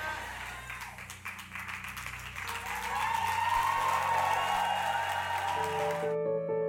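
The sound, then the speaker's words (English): A church audience applauds steadily after a prayer, dense clapping swelling louder after a few seconds, with sustained tones from a keyboard or organ beneath. The applause cuts off abruptly near the end, leaving the held tones. “Put your hands together and please take your seats.”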